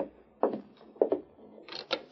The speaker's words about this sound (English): He's dismounted. I'll open the door.